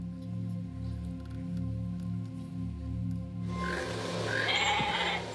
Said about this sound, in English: You ever seen that scene where they're wanting to feed T-Rex, and so they put this goat out there for T-Rex to eat, and it doesn't go as planned.